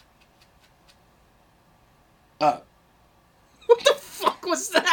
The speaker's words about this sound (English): That was a burp.